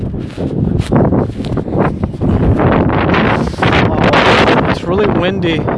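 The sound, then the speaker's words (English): Strong, cold wind buffets a phone microphone, producing loud, continuous rumbling and roaring gusts with little letup, while a voice is faintly audible beneath the noise near the end. The phone is held in a gloved right hand. “It's really windy and it's really cold.”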